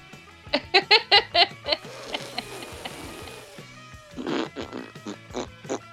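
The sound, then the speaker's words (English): A noisemaker is blown to make fart noises: a quick run of five or six honking, buzzy blasts, then a longer raspy sputter, and finally a few more loud, wobbly toots. “Of course, I was one of the girls that was like, "I'm gonna blow into it and make fart noises."”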